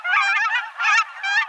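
cackling goose calls

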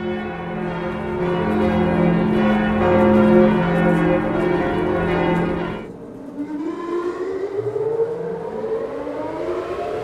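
church bells ringing

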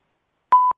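voicemail beep

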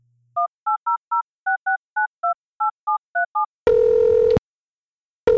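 telephone keypad dialing tones

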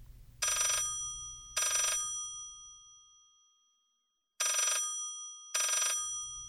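telephone ringing

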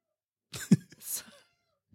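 cat meowing in protest

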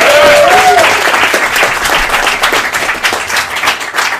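audience round of applause

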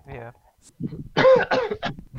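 coughing

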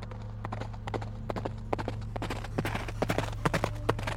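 horse hooves clip-clopping

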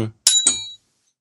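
bell ringing

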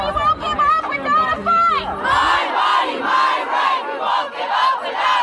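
crowd chanting

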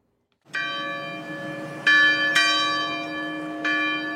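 church bells ringing

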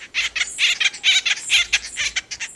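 acorn woodpecker calls

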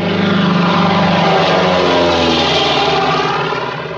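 airplane flying overhead

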